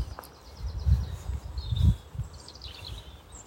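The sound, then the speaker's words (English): Birds chirp faintly in open countryside in spring, scattered short tweets and a brief whistle, over soft low thuds and rustling. No one speaks. “The birds aren't chirping with quite the vigour either.”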